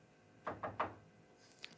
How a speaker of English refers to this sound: The frame is made out of wood. All right, I'm going to knock on wood really quickly after I say this